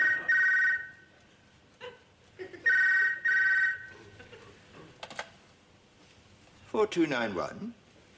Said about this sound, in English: He gets a phone call, and that is a terrifying thing to have after 11 o'clock at night.